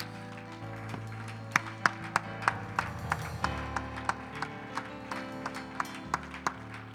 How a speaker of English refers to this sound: Give the Lord a hand clap of praise in this house today.